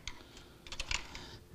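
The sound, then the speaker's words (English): Quiet scratching of a pencil on paper, a quick series of short scratchy strokes and taps with no voices. “Just like that lead working through that pencil, so his Holy Spirit working through our life and being revealed to the world.”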